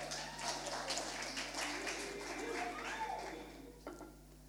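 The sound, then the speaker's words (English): An audience claps steadily for a woman coming up to share her testimony, a dense wash of overlapping hand claps at moderate volume that thins out and fades toward the end. “if you want to give her a round of applause.”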